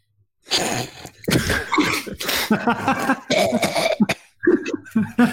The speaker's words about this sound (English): Well, apparently you coughed and it came up.